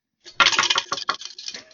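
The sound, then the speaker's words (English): A quiz-answer ding from a contestant's ringer: a short, loud burst of bright metallic jingling rings out for about a second and then fades, with no voices. “I dinged before he did.”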